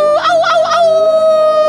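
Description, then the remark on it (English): A voice imitates a howl: one long, fairly high, tonal cry that warbles and wavers for its first half, then holds steady and loud for over a second. “And you hear fucking howling everywhere. And you go, ow!”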